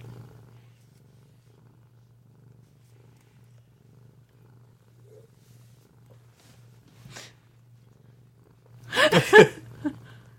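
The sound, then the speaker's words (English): A cat purrs steadily and softly the whole time, a low continuous rumble, before a short, louder burst of sound erupts near the end. “Poor cat.”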